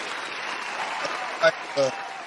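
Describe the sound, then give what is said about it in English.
A steady, dense wash of crowd applause, a standing ovation, holds throughout, with two brief voiced shouts rising above it near the end. “That sounds like a standing ovation, like the Oscars.”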